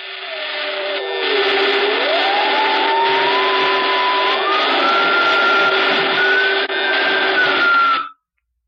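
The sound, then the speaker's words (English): A loud, steady electrical buzz and hiss of Horn's machine, with two men strapped into it, crackling and sparking with power, with a whining tone that dips then climbs in pitch, running about eight seconds before cutting off abruptly. “There was a great crackling and sparking.”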